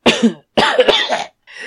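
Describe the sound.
A voice acts out a wet, hacking cough, coughing up a large mass of mucus: a short burst followed by a longer gurgling, phlegmy stretch and another rasp that gets cut off, loud.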